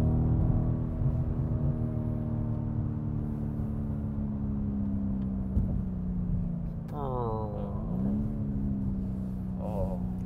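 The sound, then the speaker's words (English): A car engine drones loudly and steadily while driving, then revs, its pitch sweeping down and climbing again as the gears shift near the end. “Just listen to that engine.”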